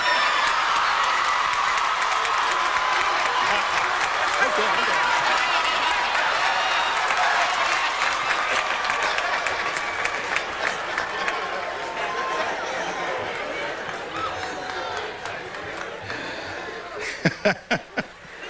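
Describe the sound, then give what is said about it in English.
A large commencement audience claps loudly and steadily for a long stretch, the dense applause slowly thinning out until only a few scattered, separate claps remain at the end. “If you are appreciative and applaud loudly very early on, you get a nice short speech.”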